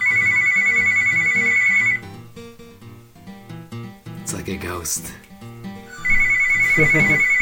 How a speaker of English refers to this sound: That's a house phone, fellas. Oh my god! Record call. This. It is a relic, man. That is a household phone.